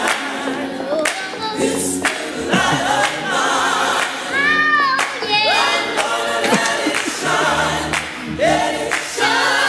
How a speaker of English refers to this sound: Come on, clap it up.